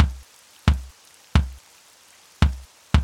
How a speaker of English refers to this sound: Jenny looked up at the ceiling as she started to hear the sound of footsteps.